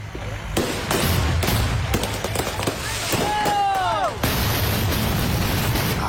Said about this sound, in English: Oh, good Lord. How scary must that be? This is a similar thing. It was a U-Haul truck that was packed with fireworks, right?